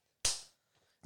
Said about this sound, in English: You only get one slapping today.